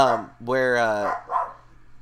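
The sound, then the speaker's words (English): A dog, upset about something, barks in a few strained, whining bursts, the middle one long and drawn out, over a faint steady hum. “my dog is upset about something.”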